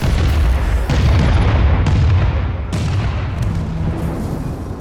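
A thunderous explosion from a damaged Cobra ship, its wing blown off, crashing in a death spiral just beside a base: a deep roaring boom that rumbles on for several seconds, with fresh blasts cracking through around the middle and near the end.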